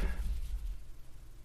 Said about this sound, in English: I'm not jinxing anything. My table's wood. Dude. You can knock on it. No way, dude. hear that?